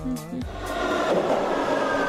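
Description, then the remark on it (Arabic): A metro train pulls in, a steady roaring rumble with a high metallic whine running through it, building slightly over a couple of seconds. “المترو وصل!”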